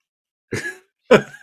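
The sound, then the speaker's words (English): A person imitates a cat hacking up a hairball, likening it to the surprised face of Ravage in a comic panel: a drawn-out, throaty retching cough, then a second harsher burst and the start of a third, loud, with silence before. “Like a cat that just like is trying to cough up a cough.”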